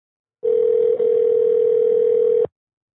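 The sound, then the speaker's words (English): A phone call to a business called Complete rings out: one steady, mid-pitched ringback tone that holds for about two seconds and then stops, with no voices. “Will they answer? Here we go.”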